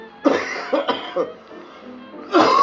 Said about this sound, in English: I gotta do a death cough before I do this. Yeah, COVID.